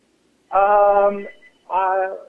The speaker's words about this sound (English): I'm sorry, the phone will stop ringing in a second. Yeah. It should stop after three rings.